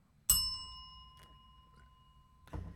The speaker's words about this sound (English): Just hit the bell.